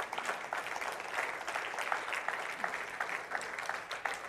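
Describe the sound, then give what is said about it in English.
An audience at a prayer meeting claps steadily for a few seconds, a dense wash of overlapping hand claps with no clear rhythm, holding at an even moderate loudness throughout. “Go ahead. Clap your hands to that.”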